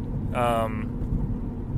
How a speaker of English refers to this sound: You have, sorry, just random traffic, random cars just breaking for no reason, pretty much.